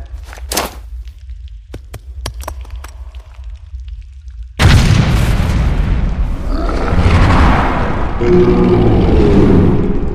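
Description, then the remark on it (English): Sharp clicks and thumps give way to a massive explosion in a mine that erupts suddenly and keeps roaring with rumbling debris and echoing crashes. “That explosion compromised the mine.”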